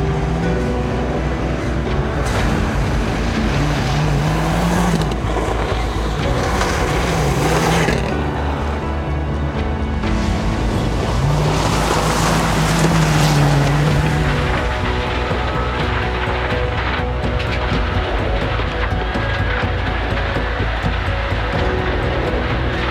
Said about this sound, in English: It's a modified streetcar. The engine's been reworked. There's different dampers, different brakes, stick shift.